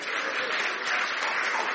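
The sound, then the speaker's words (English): A crowd applauds three people steadily, a dense wash of many hands clapping at once, fairly loud and continuous throughout without any talking over it. “And a round of applause for these three.”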